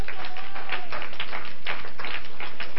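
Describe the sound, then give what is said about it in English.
An audience claps together, a dense, steady patter of many hands with no single beat standing out, sustained evenly for a few seconds with no voices over it. “Clap into Jesus.”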